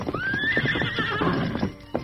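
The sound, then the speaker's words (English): A horse, Silver, lets out a high, wavering whinny over rapid clip-clopping hooves as the Lone Ranger grasps the bridle and turns the horse's head. The hoofbeats continue in a busy rhythm after the neigh fades. “The Lone Ranger grasped the bridle and turned the horse's head as Tonto rode up on the other side.”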